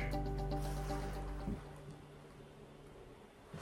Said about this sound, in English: I take big poops. Not anymore. My poop can't be too big now to flush. Flush.